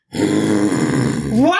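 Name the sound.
person imitating a roar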